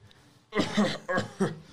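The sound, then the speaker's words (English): A person with a lingering cough gives three rough, breathy coughs, the first longest and the next two quick and clipped, with nothing else around them. “I just can't seem to shake this cough.”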